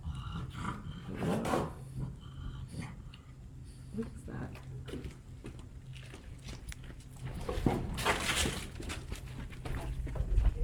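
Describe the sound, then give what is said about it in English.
A dog retches and heaves up food in a series of wet, guttural gags, with a steady low hum underneath and the bursts growing louder near the end. “Something regurgitated.”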